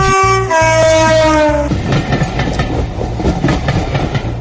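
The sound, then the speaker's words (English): A loud train horn blasts with a chord of sustained tones that drops slightly in pitch, then gives way to the rumble and rhythmic clatter of a passing train. “If we go to the train station.”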